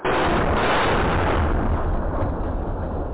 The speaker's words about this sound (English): More explosions were heard on Saturday night. Both sides seem determined to fight on, leaving millions of Sudanese fearing for their lives.